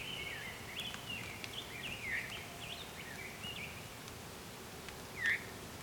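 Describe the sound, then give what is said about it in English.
An orchard oriole, chasing off a red-tailed hawk, sings a quick, whistly warbling song, phrases running almost continuously over a soft outdoor hiss, with one brighter, louder note near the end. “Or actually, no, that was an orchard oriole. Interesting. Because it had that song where, yeah, it's kind of whistly, but it was more like a warbling vireo and it interrupted itself.”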